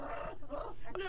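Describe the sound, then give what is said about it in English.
A dog named Pom Pom barks in short, yappy bursts over about a second, fairly loud, ending on a sharper bark, with a voice mixed in underneath. “So, Pom Pom is barking at a...”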